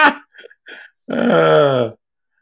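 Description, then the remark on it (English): A leg rubs against a wooden dresser: a few short squeaky creaks, then one loud, drawn-out, low groaning squeak that sounds fart-like, with no talking. “that was not a fart. That was my leg rubbing up against this dresser. See?”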